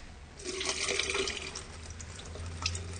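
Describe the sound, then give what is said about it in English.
Water is poured steadily down a sink, a splashing rush with gurgling that continues for a few seconds without talk. “So do you want to just pour some of that water down the sink then”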